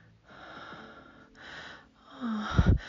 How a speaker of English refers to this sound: Oh, my breathing is shallow and fast.